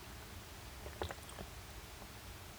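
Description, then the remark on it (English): A quiet sip of wine from a glass: a brief cluster of soft wet slurping clicks lasting about half a second, set against a low, steady background hum with no talking. “I'm going to have a sip before I start playing the music just to compare.”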